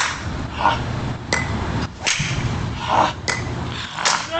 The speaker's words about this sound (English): He's hitting it better than someone would hit it off the tee! He's drilling. Dude! That one is smoked right there.